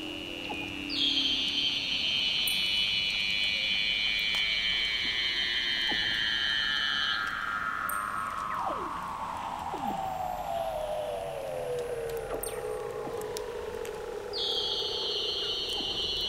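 Eerie underwater calls of Weddell seals at Big Razorback Island in McMurdo Sound, Antarctica, recorded with hydrophones: long descending whistles that glide from high to low, overlapping with sustained high trills, ringing out steadily against a constant watery background hiss with no voices.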